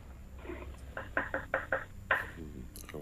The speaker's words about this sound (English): I can hear a knocking. I can hear a knocking in the... Oh, there it is again. Are you chopping parsley or something right now?